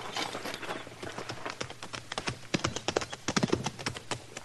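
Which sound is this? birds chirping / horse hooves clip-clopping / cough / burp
horse hooves clip-clopping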